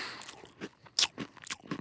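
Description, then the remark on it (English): Crisp crunching as someone bites into and chews pretzels, with about five sharp crackly bites in an uneven rhythm and no talking. “I can bite part of one pretzel, then bite the side of another pretzel, and then I hook them together, and I can count that as one pretzel.”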